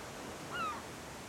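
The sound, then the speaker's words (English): A steady, soft wash of ocean surf breaking on a beach fills the background, with a brief high-pitched call rising over it midway through. No one speaks. “Enjoying yourself and breathing to the sounds of the ocean.”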